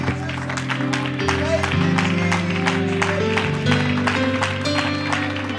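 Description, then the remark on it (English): An audience at a church worship service claps and applauds steadily to praise the Lord, a dense, loud wash of hand claps over sustained low organ-like tones and voices that carry through the whole stretch. “Clap your hands and lift your voice and praise the Lord.”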